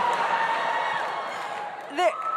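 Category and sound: crowd, audience cheering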